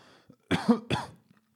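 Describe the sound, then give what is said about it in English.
Two harsh, close coughs in quick succession, loud and right up against the microphone, with a short catch of breath between them and quiet before and after. “I didn't mean to cough into the mic.”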